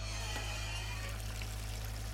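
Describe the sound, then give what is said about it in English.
Water pours steadily from a hose into an assembled plastic bin fitted with a pump, part of a homemade hydroponic farm. A continuous splashing rush with a low hum underneath, fairly loud, no voices. “Now that we have the bin assembled and the pump in place, we can get the water flowing.”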